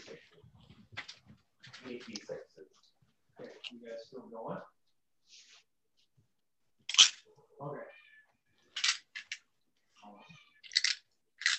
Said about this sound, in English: Is there a cat meowing?